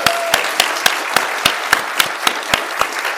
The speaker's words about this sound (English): A round of applause for Quentin Smith, please.